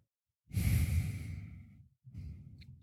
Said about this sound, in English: I think I'm breathing heavily today. Can you hear that? It's all right. It's dramatic. I know I'm doing it. So it's what's going on. Dramatic breathing.